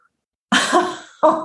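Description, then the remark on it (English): A loud, breathy sneeze bursts out after a moment of silence, then a second shorter explosive burst follows right behind it. No one speaks. “Bless you.”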